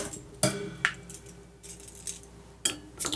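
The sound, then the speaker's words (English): A home-brewed beer bottle, bottled with the wrong sugar, is cracked open: a few sharp glassy and metallic clinks, with a short, faint hiss in between and no talking. “Well, yeah, just crack it and see what happens here.”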